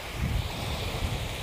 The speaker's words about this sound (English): And bye-bye from the waves. By the beach.